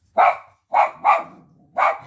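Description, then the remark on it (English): The speaker's dog, Yorkster, barks four times in short, sharp bursts, the first alone and then a quick pair before a final bark after a pause, clear with no talking. “And there goes my dog.”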